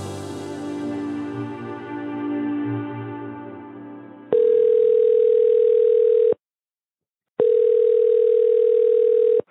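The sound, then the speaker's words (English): A telephone tone on an outgoing call sounds in two long, steady, loud beeps separated by a short silence, following a brief stretch of humming, tonal sound. “Today, I wanted to make a few phone calls and see what's going on around the Midwest when it comes to agricultural drainage this fall, and talk to a few contractors”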